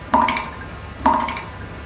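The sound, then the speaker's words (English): Two clear water drips from a leaky faucet, each a bright, ringing plink spaced about a second apart, fairly loud, with no talking. “That would be a dripping faucet. That is a leaky faucet.”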